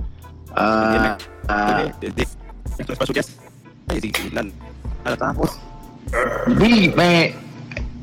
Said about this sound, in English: What dog is that? Nah, this is Dex.